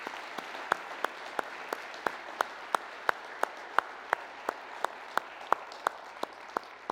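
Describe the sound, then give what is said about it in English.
Audience applause for people who have served or are serving in the armed forces, a steady wash of many hands clapping with one sharp, crisp clap standing out at an even, brisk rhythm throughout. No voices are heard over it. “Let's applaud.”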